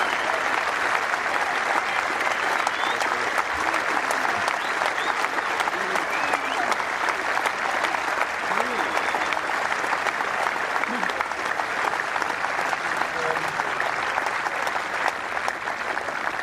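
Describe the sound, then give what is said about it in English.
A golf crowd applauds Mark Roe as he walks up after a round of 66. The sustained, dense clapping stays loud and steady for the whole stretch, with a few faint cheers and whoops rising briefly out of the applause. “A wonderful response from the crowd.”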